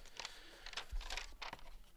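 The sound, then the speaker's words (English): Soft paper rustling as a sheet is flipped over, several crinkly bursts with a faint thump midway, quiet and with no talking. “You just turn the paper over.”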